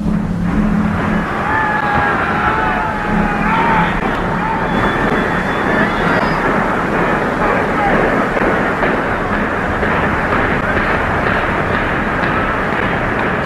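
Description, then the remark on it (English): Demolition charges bringing down the Vet go off one after another, section by section, in a rapid sequence that merges into a steady, loud, roaring rumble lasting the whole time, with faint high tones audible in the first few seconds. “it sounded like a train rumbling by as it kind of the explosives detonated section by section.”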